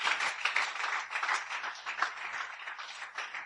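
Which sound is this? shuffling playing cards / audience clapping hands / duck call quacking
audience clapping hands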